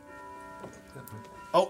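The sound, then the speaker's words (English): Bells ring with steady, sustained metallic tones, and a louder bright strike near the end stands out over faint voices murmuring underneath. “We got the church bells ringing. That's what it sounds like, man.”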